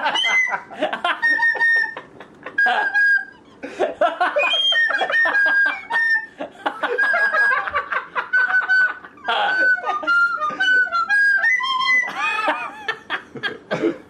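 A recorder plays a song's riff in shrill, wavering notes, choppy phrases with short gaps, pitch sliding and squeaking upward near the end, loud and continuous throughout.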